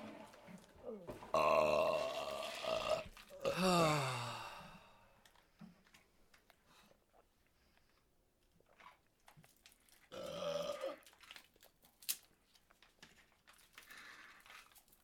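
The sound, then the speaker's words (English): Loud, croaky burps: two drawn-out belches in quick succession near the start, then a quieter stretch of faint rustling, and one more shorter burp toward the end. “It was a burp at the end.”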